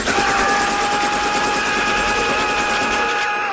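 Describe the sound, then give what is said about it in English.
A helicopter roars steadily in a film scene from Rambo 3 where a tank takes on a helicopter head on, its rotor chopping in a fast, even rhythm over a dense engine whine, loud and continuous for the whole stretch with no voices. “Yeah, you should not remember a lot of Rambo 3, except when the tank takes on a helicopter head on.”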